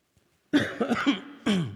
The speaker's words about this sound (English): I have no way to not cough right into this microphone. Not that a cough is a new thing for me. I mean, you know, I coughed with a raspy voice before it was relevant.